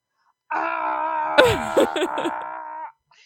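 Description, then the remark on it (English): A movie character's long, drawn-out male scream holds a steady, strained pitch for over two seconds, while a second wavering, moaning cry overlaps it midway before both cut off abruptly. “What do we feel about that scream, guys?”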